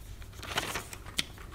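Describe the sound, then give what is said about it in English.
A sheet of paper rustles and crinkles as it is handled, with several soft, brief crackles spread irregularly over a second and a half, quiet, with no talking. “Do you recognize this piece of paper”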